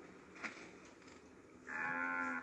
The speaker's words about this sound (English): The cow. The cow is awesome. If you don't like that cow and you're how to say to you, you're a monster.